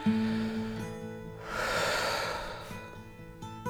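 One slow, deep breath swells as a long, airy rush lasting over a second, rising and fading, over a soft, steady sustained musical tone that continues throughout.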